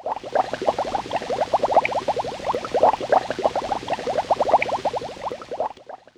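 Water bubbling rapidly and steadily up close, a dense stream of quick gurgling pops like air blown through a straw into a glass, continuing for several seconds before stopping.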